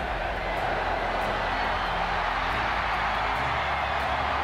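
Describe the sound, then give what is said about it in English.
A stadium crowd at a rugby league grand final roars with 5 seconds to go in the match, in a dense, unbroken wash of cheering that stays loud and steady for the whole stretch, with no clear voices standing out. “5 seconds to go. The crowd take it out.”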